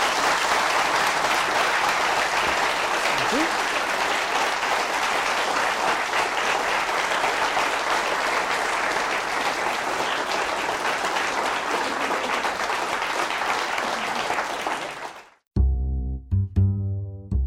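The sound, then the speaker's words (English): A large audience at a University of Chicago Law School event applauds steadily and loudly for about fifteen seconds, a dense wash of clapping that cuts off abruptly, followed by a few seconds of music. “But the standard is whether or not you want to applaud, but I urge all of you to thank Mr.”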